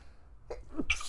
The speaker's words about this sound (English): How do you not get your shit together and quit sneezing?